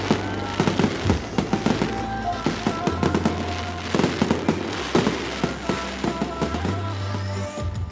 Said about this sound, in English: Just as we parted, the fireworks illuminated the sky.